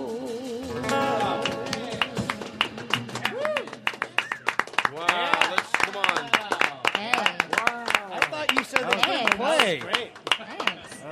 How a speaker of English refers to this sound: Oh, I love having a room full of men clapping for me.